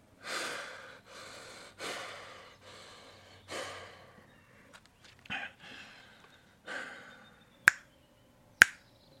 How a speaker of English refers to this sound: Snap your fingers twice once the device has been inserted into the port.